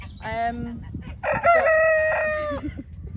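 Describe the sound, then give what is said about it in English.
A cockerel crows, loud and clear, on agricultural land in the countryside: a short rising note followed by a long, drawn-out call that wavers before fading, over faint background rumble. “on agricultural land, it's a cockerel noise here and there isn't a problem.”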